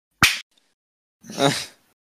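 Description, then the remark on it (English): A single sharp, loud hand clap with a quick decay, followed about a second later by a softer, longer, breathy burst of sound. “Right, can we just leave a couple of seconds silent so I can find this easily in the waveform? Or if I clap.”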